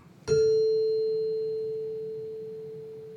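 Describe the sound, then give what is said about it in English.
A single mallet strike on a Deegan one-bar xylophone rings out a clear, pure A 440 tuning tone that sustains steadily and fades slowly over a few seconds, with a faint high overtone above it. “Deegan made a one-bar, like a little one-bar xylophone, which I have. There's a four on that dinner chime.”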